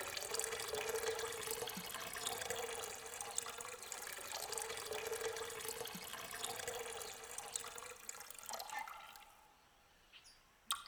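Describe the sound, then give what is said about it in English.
A steady stream of liquid pours into a jug with a bright, hissing rush and a faint tonal ring, running continuously for about nine seconds before it tapers off and stops. “And that fool Pigsy, lifting his dress, let fall such a cascade as would have made the Lu Liang Falls seem a mere trickle.”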